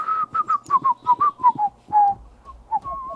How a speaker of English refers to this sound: My dad, his signature theme song, he would whistle finiculi finicula.